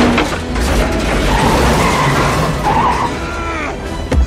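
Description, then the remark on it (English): A car is started and driven through, roaring with tires skidding and squealing in wavering pitches, a loud, continuous rush of engine and road noise that ends with a brief thump. “And he turns the car on with Fat Hitler in the passenger side. And he drives it through.”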